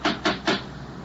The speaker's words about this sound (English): I reached the front door. There was no bell, but there was a huge brass knocker.